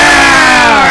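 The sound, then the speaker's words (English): A large crowd of men, warriors in a film scene, roars in unison, a loud, sustained cheer of many voices that holds steady for just under a second. “You know what's great is, after you hear them all cheering, you hear the wise master kind of mutter, that is good.”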